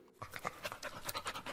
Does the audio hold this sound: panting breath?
yes